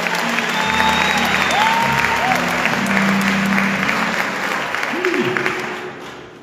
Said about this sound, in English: Clap your hands for the Son of God.